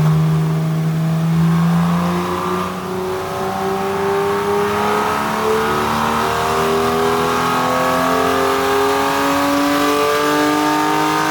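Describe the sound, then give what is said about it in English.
A first-generation 991 sports car's 3.4-liter naturally aspirated engine revs loudly, its tone climbing steadily through the rev range with a brief dip as it shifts, sustained for the whole stretch without any talking. “I, as you know, have the first generation 991 with the 3.4-liter naturally aspirated engine.”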